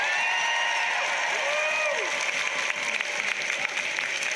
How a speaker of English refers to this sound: What the scientists, and dare I say the experts, have given us, the experts. Round of applause for the experts.